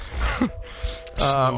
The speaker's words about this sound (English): What, is he snoring? You want me to stop?